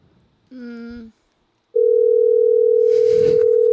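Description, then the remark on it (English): A short buzzy electronic chime, then a loud, steady telephone dial tone holds one pitch for about two seconds as a call is placed to Bath and Body Works. A brief burst of noise rises partway through before the tone cuts off. “Call Bath and Body Works.”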